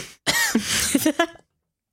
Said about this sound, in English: coughing a little bit.